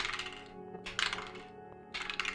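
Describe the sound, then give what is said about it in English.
Dice rattle and clatter in three quick bursts, clicking and tumbling as they are shot against a wall in a dice game, with brief pauses between each roll and no voices. “Shoot the dice.”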